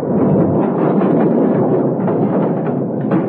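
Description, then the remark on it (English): A loud explosion of blasting powder, lit by a fuse, blows a safe door clean off in a store. It roars and rumbles steadily for a few seconds, a dense low blast with no voices, holding its force before easing slightly near the end. “They prepared the blasting powder, lit the fuse, then stood back, waiting for the explosion.”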